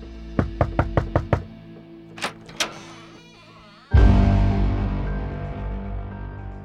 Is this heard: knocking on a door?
yes